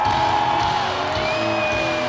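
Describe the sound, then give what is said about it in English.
A huge, sold-out stadium crowd in Ukraine roars and cheers as the music starts and a band takes the stage, a steady, loud wash of noise for about two seconds, with a few long, high whistle-like tones sliding over the din. “And the crowd roars as the music starts”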